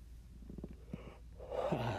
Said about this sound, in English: I keep fucking yawning. Jesus Christ.